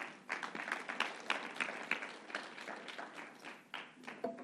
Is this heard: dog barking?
no